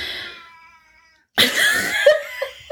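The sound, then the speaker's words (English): A female cat that has just walked in meows loudly, two drawn-out, harmonic cries separated by a brief silence, the second one harsher and more insistent, almost a yowl. “Sorry, the cat's just walked in and she's loud.”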